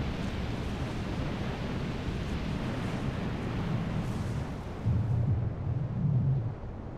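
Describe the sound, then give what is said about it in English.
A dense, continuous volcanic roar with deep rumbling, swelling into two heavier explosive bursts near the end, as erupting magma meets a body of water and the large temperature contrast makes both the water and the magma explode. Loud, with no voices. “When the erupting magma comes into direct contact with a body of water, the very large contrast in temperature causes both the water and the magma to explode.”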